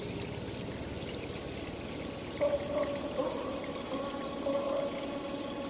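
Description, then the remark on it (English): Cold water splashes and pours steadily from a natural fountain in a cave as hands dip into it and splash the water up onto a face. The continuous flow is moderately loud, with brief gurgling tones midway, and no voices. “The natural fountain that sat against the edge of the cave twinkled as Mark got closer and dipped his hands into the cold water before splashing it up and onto his face, washing away the dust and sweat of a long day's work.”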